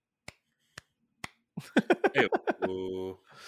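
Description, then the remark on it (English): Three sharp, evenly spaced hand claps ring out alone against silence, followed by a burst of rhythmic vocal sounds and a sustained held voice. “Get it? Claps.”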